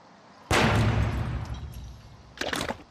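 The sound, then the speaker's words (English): A loud explosion in a chemistry lab bursts in suddenly and rumbles with heavy low-end debris noise, fading over about two seconds before a second, smaller crackling blast erupts near the end. “And then it gets to the point where he causes that explosion in the chemistry lab and...”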